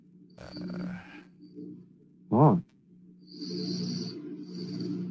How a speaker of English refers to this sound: Somebody was breathing heavy.